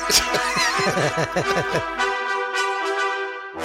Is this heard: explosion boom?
no